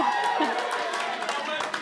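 An audience cheers and whoops in a steady, dense wash of crowd noise that holds at an even loudness for the whole stretch, with a few scattered claps mixed in.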